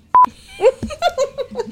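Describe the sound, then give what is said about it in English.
A single short, loud electronic beep at a steady mid-high pitch, marking the 'Can I Just Say' segment, sounds briefly, followed by a few quick voiced sounds. “Do I do a beep for Can I Just Say?”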